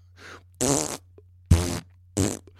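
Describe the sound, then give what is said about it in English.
A few loud, buzzy fart blasts into a can, with a hollow, resonant ring: a soft lead-in, then three separate bursts with short pauses between, with no talking. “Listen to your podcast critics if you want, but just know that I, and I'm sure many others of us, would still love your podcasts, even if you farted into a can for 45 minutes.”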